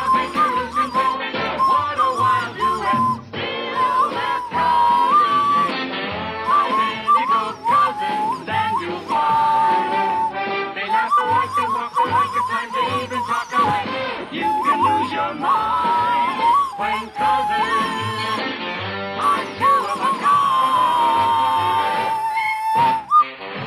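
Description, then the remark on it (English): A death whistle shrieks loudly and almost without pause, its harsh, wavering scream of breathy noise rising and falling in long blasts, with no talking. “do this, the death whistle to send their spirits off.”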